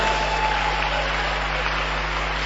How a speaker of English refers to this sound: We have named them after the camps in the church. When I mention them, clap for them.